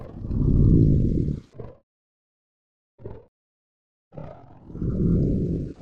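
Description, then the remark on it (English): Two loud, deep, growling creature roars bracket a short grunt, with a processed, blended quality. Two clips with changed speeds and pitch shifting are blended together with a morph plugin. Silent gaps separate them. “Let's get out our trusty morph plugin to see if I can blend the two of these things together and make them sound even more so like one piece of audio.”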